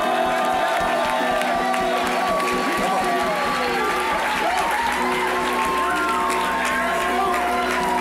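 A crowd applauds steadily and loudly, with whoops and high cheers rising over the dense clapping throughout, and no break in the noise.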